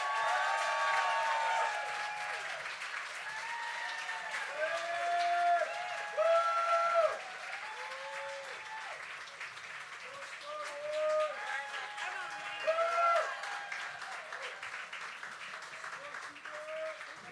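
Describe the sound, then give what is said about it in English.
A large crowd applauds and claps steadily for many seconds, with whoops and cheering voices rising above the dense clapping throughout. “And you don't have to clap long for me.”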